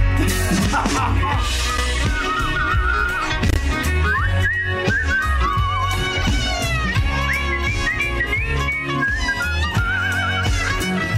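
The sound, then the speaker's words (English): Someone whistles a bright, warbling, birdlike melody, like a robin's call, riding on top of a loud, full band that plays steadily throughout. “I added that whistle, the last one. It sounded like a bird. I know. Like a robin.”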